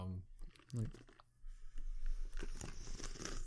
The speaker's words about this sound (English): And you could hear that ice in there, too. Mm-hmm. But it's insulated, so that ice is going to stay icy longer.